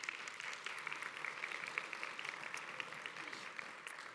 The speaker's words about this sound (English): And you can clap for them. That's fine.